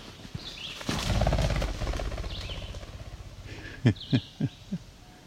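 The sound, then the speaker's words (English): A ruffed grouse that was hiding along a trail bursts up with a loud, rapid whirr of wingbeats that fades over a couple of seconds, followed by a few heavy thumps, with faint birdsong in the background. “That was a ruffed grouse. Sitting along the trail, hiding. Jumped out.”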